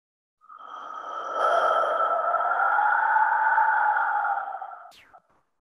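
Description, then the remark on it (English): A wind whistle flute played by a man at the pyramids in Mexico sounds one long, breathy note, holding a steady pitch with a rushing airy edge for about four seconds before cutting off with a small click. No one speaks. “A few years ago, I was at the pyramids in Mexico, and I heard this man playing this whistle, and I'll just give you a little.”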